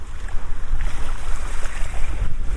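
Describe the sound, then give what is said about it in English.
Sea water washes steadily against a stony beach, a continuous hiss and swirl with a deep rumbling undertone, fairly loud, with wind noise buffeting the microphone and no voices. “I keep finding myself standing in the water again. The pull of it is very strong.”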